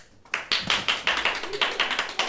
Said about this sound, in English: Thank you. Thank you for the pity applause.